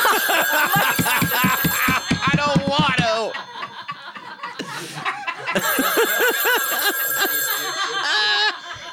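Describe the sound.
A telephone rings with a steady, high electronic tone, pausing briefly mid-clip before ringing again, while people talk and laugh over it.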